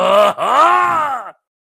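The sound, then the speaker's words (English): A voice lets out a strained, drawn-out groan, broken by a sharp intake of breath partway through as someone gasps for breath. It is loud and alone, lasting just over a second. “you gasp your own breath.”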